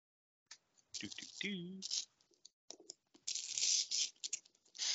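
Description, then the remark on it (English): Scratchy rasps of an X-Acto craft knife slicing through packing tape on a box inside wrapping paper, coming in several uneven bursts of cutting and tearing, with a short vocal murmur partway through. “Let me get my X-Acto knife here to cut this tape.”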